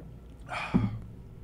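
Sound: drinking water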